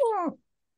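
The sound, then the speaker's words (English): A single brief, high-pitched squeaky voice imitating a mouse, sliding downward in pitch and ending abruptly, followed by silence. “Talking like oh, a mouse hurts.”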